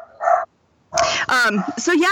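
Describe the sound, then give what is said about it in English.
Pet dogs bark: one short, mid-pitched bark, a brief silence, then a louder, busier run of overlapping yaps and barks that continues to the end. “My dogs are barking.”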